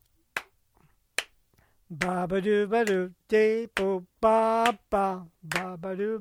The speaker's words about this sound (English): Let me do the clap. I'll do the clap part, and you do the, I can do the clap. Okay. But I want you to try it. That means you got to stop clapping.